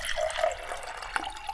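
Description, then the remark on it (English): Fireball liquor is poured straight into a glass in a steady, gurgling stream, moderately loud, with a couple of small clinks or splashes near the end. No one speaks. “Heavy pour.”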